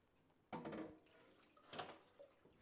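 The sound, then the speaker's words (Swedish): Water is poured off boiled asparagus in two short splashing gushes, with a brief pause between them and faint trickling afterward. No one speaks. “Bra, då den är där, så häller vi av vattnet på sparrisen.”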